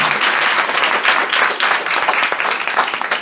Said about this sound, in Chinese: 我常常说他们给我最好的礼物，除了是把我生下来之外呢，就是给我最非凡的思想，所以在这里请再给他们一次掌声。